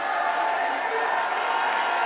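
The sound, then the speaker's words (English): A large crowd shouts the name of Jesus and cheers in a dense, continuous roar that stays loud and steady throughout, with many voices blending together and no single speaker standing out. “And I want you to shout the name of Jesus and clap your hands.”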